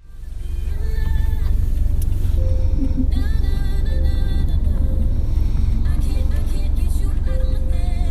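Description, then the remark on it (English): A song plays faintly inside a moving car driven by a driver, captured by a passenger on a recorder, its melody half-buried under the steady, heavy rumble of road and engine noise that fills the whole recording. “I'm going to play you a little snippet of what I was hearing in the car, and then I'm going to play you the actual audio.”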